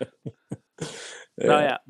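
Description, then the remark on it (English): Three quick, clipped throat-clearing bursts are followed by two longer, rough coughs from a person releasing a held-back cough buildup, fairly loud, with no talking in between. “Oh, sorry, I had a cough buildup, and I was trying to hold it back so you could talk and”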